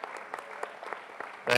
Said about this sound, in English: But anyways, I want to thank you guys so much, so much for coming on the panel. And I want to thank the audience for coming to listen to you guys. If we can get a round of applause for everybody.